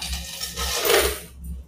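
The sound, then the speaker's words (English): Gold coins (doubloons, guineas and pieces of eight) clink and jingle together in a canvas bag as they are sorted, a short burst of bright chiming rattles rising to a busier shake in the middle before settling, with no voices present. “looking like paper in a canvas bag that gave forth a touch of jingle of gold.”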